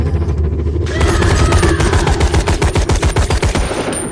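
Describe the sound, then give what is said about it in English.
Rapid bursts of loud rifle fire crack in a fast, steady rhythm over a rumbling low background in a film scene where the character Lena fires her rifle at a humanoid. The shots continue for several seconds without any voices. “She raises her rifle. She screams. She fires.”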